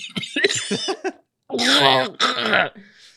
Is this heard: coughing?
yes